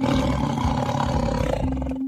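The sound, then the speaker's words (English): A tiger roars loudly, a deep, rumbling growl that fills the full two seconds with a rough, sustained snarl before fading at the end. “Do you know what I'm talking about? It's a tiger.”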